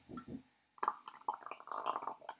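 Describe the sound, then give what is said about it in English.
Sour beer fizzing and bubbling in a glass, a busy, gurgling liquid sound that starts after two soft low thumps and keeps up steadily with no talk over it. “I mean, the sours generally are, they are a bit more lively, aren't they? But that is fizzing away.”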